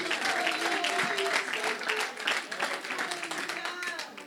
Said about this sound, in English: Clap your hands and give him some praise right now.